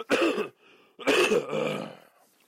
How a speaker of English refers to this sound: Okay, I listened back, and that cough sounded all kinds of disgusting, so I apologize. I will do what I can in the editing part to lessen that blow.